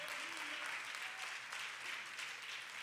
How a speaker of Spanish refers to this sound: Denle un fuerte aplauso, Señor.